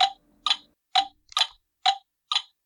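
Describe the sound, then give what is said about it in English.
A ticking clock with six crisp, evenly spaced ticks about twice a second. Each tick is bright and slightly metallic and clear, with no voices. “Go back to the ticking clock again.”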